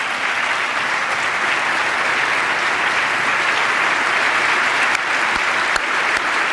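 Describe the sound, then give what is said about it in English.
Sustained audience applause as the father of a young man who was killed stands and applauds, a dense steady wash of many hands clapping at an even loudness for several seconds, with no voices standing out. “So now you got a guy standing up there applauding him.”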